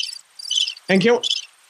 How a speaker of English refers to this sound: That's crickets when JJ's talking.